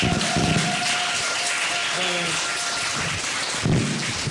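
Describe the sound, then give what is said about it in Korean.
An audience applauds steadily for several seconds, a dense, continuous wash of clapping at an even level, with a faint voice briefly audible underneath partway through. “뭐 박수는 돈 드는 거 아니니까요.”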